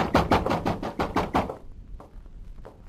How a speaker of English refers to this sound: You frightened the doctor pounding on the door.